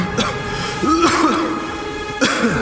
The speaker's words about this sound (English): throws the scarecrow off him and jumps to his feet, coughing and gagging.